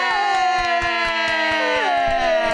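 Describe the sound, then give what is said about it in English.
An audience claps into a microphone to welcome a guest, in a quick, irregular patter, the sharp slaps coming steadily for a couple of seconds beneath a sustained, slowly gliding tone like a held cheer. “Applauding into the microphone.”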